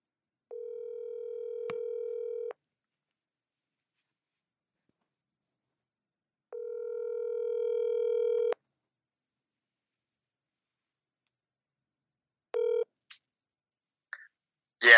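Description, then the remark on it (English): A telephone ringback tone of a call to a friend sounds twice, each steady low buzz lasting about two seconds with a long silent gap between, followed by a few short electronic beeps and a click as the line connects. “Sometimes I call some of my friends.”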